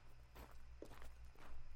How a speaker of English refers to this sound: I felt no urge to get up as the footsteps got closer.